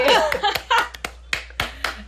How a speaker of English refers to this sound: Oh my God! I love how I'm clapping for myself. It's just so exciting to hear those credits.